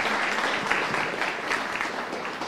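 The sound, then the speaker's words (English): A round of applause for a man who has just spoken about Jesus: dense, steady clapping from many hands at once, the overlapping claps forming an even, fairly loud crackle that holds throughout without pause. “Can we give him a round of applause, everybody?”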